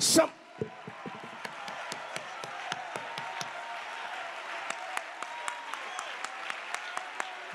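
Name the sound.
audience clapping hands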